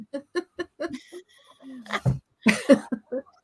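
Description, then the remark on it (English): A person coughs, a couple of harsh, breathy bursts following a run of short, choppy vocal sounds, with no clear speech. “So, oh, excuse my coughing.”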